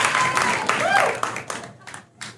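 An audience claps steadily in a dense burst of applause, with a brief whistle or cheer rising above it before the clapping thins into scattered claps.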